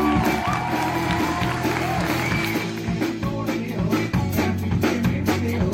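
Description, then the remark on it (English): A large crowd cheers and screams in a loud, continuous roar that fills the whole stretch, with scattered sharp bursts like clapping rising out of the din. “I like it with the crowd.”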